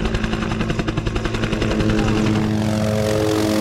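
A smaller helicopter flies overhead, searching for a rhino. Its rotor chops in rapid, steady thumps before the sound evens out into a loud, continuous engine drone and whine.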